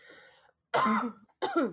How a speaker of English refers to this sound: This will all get cut out. I'm cutting all the coughing out.